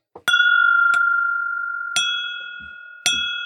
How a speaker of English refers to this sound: Hit it with the bell, dink.